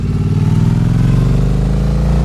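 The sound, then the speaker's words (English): A motorcycle engine rumbles steadily as it is ridden along a curvy mountain road, its low harmonic drone rising slightly in pitch, loud and continuous with no voices. “We talked so much about cornering and curves that, you know, that's what makes motorcycle riding fun. So here we are on a curvy mountain road.”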